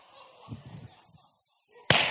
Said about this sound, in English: He just lit a firecracker and threw it underneath that guy.